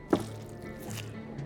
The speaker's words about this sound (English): The lighted candle is dripped into the empty ring, and the scribe holds his breath as the king presses the seal to the wax.